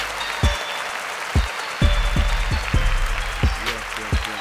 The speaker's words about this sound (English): A round of applause for the ASAP.